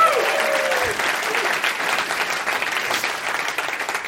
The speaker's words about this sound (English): I am very happy with the applause level, so that's working for me.